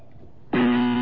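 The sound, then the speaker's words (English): After a moment of near-silence, a loud electronic buzzer blares abruptly and holds a steady, harsh tone right through to the end. “I almost lost my buzzer.”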